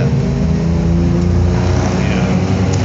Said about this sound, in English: A little Canadian traffic behind us.